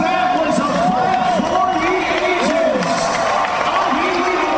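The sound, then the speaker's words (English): A loud, dense crowd at a fight roars and cheers wildly without pause after a third-round TKO win, many voices overlapping with shouts and whoops rising and falling throughout. “And you can listen to this crowd being going absolutely wild, haven't they?”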